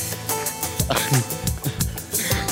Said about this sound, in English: Sorry, I'm coughing up Corona.